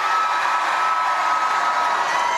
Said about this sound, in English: Well, now that the cheering has stopped, Hickenlooper has his work cut out for him to win the 2020 Democratic nomination.